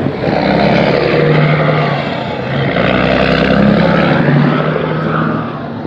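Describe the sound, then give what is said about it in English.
A heavy semi truck, apparently a vented pig truck moving livestock, roars and belches in heavy passing traffic, a loud, steady low rumble with droning tones that swell and hold for several seconds. “There's the belch of a semi driver doing his job, making sure it's actually it looks like a pig truck, vented, whatnot.”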